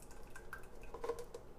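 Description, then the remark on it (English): Broth from cooked food is poured off into a container, trickling and splashing softly, a quiet, steady pour with faint dripping and a light clink of dishware, no one speaking. “I'm actually going to pour it in here first. I don't like my stuff super soggy.”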